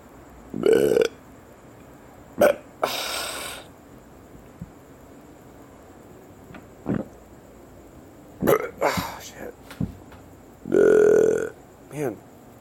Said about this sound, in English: For all the burps, but you know, it's me, it's my life.